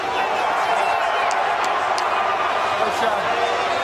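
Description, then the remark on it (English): A large crowd at the draft in Chicago roars steadily for a few seconds, a dense wash of many voices mixing scattered cheers for the city with booing for the commissioner, loud without any pause. “Smattering of cheers for the city, but the old Bronx cheer for the commissioner.”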